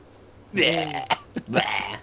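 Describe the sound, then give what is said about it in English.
Two drawn-out, croaky burping noises from a voice, loud, separated by a few short throaty clicks, with faint background hum before them. “frequently makes burping noises around us.”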